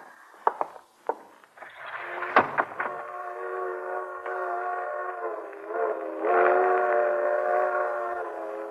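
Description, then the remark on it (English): A freight train's whistle sounds in a long, steady multi-tone wail that swells louder toward the end, after a few sharp clanks at the start. No one speaks. “Hear that, Iris? Freight train.”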